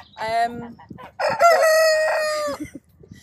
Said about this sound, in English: on agricultural land, it's a cockerel noise here and there isn't a problem. Plus we've been doing everything we can to try and reduce the noise, blacking out the cockerels' windows, moving them, not letting them out till a bit later in the day.